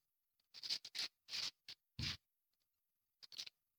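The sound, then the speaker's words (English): Bible pages rustle and flip as people turn to Matthew chapter 5, in a series of short, irregular crinkly bursts, moderately loud, with brief quiet gaps between them and no voices. “I hear the paper rustling like popcorn.”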